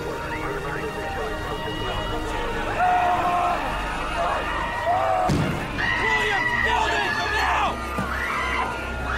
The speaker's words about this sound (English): There's some really good sound design of, like, bystanders screaming. And I think you can hear a little thud, too. It's really well done.